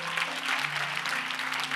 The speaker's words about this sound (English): Amen. Amen. Clap for Jesus, everybody.